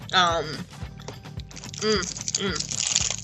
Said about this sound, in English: we both hit the chewy part at the same time because it's not chewy at first, but then after you've chewed it a while, all the chocolate disappears and you're just left with caramel just like chewing around there.